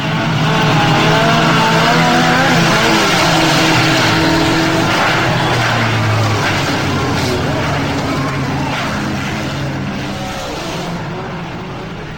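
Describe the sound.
Several vehicles of Anthony's gang approach, coming back from the scrounge. Their engines rev loudly and steadily, the pitch rising and falling as they surge, with voices mixed in beneath the roar, which eases slightly near the end.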